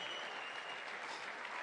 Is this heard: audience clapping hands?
yes